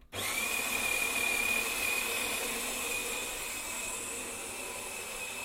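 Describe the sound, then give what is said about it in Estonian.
A coffee machine, refilled with water after running dry, starts abruptly and runs making coffee with a steady, loud mechanical whir and a thin high whine, easing slightly in level toward the end. No one speaks. “Kaugemale ja nüüd kui ma seisan keset tuba ja pöördun koha peal, siis te kuulete, kuidas kohvimasina hääl liigub.”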